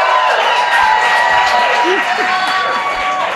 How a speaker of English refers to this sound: That's maybe the loudest applause we've heard all night.